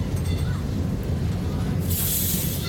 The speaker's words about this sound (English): Michael Rusenberg and Hans Ulrich Werner recorded this soundscape of the Lisbon-Portugal tram, the city's streetcar system.